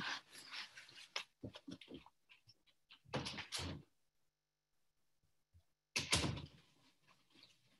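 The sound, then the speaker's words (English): A door is handled to let a dog out: a rattling slide and clatter, then a pause, another burst of scraping, silence with a few faint taps, and a final sharp thud as it shuts. “One moment, I have to let my dog out.”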